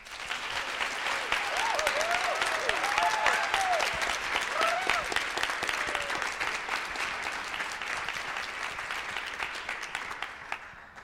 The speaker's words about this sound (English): And so I don't know if Merle's watching right now, but I want to offer a round of applause as thanks to him.